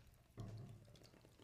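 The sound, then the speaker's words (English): A beer being opened and poured: a sudden rush of liquid starts and continues as a steady gurgling pour. There is no talking. “It's called the Kraken of the Celebratory Beer, and it sounds like... this.”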